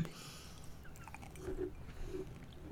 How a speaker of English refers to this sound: he's eating potpourri straight out of the bag, as you can all hear. So I apologize to everybody listening. Don't worry, it's holiday flavor.